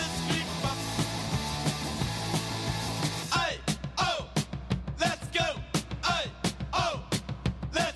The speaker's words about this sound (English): the one that kicked the whole thing off, the whole punk movement started by …, …